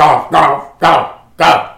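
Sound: dog barking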